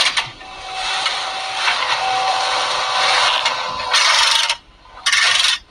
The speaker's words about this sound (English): Break up the concrete. Oh, okay. What the fuck is that? Jackhammer.